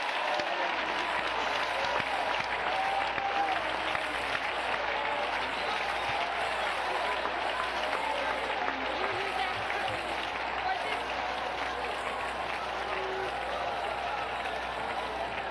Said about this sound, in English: Well, shout hallelujah. Shout thank you, Jesus. Clap your hands to him one more time.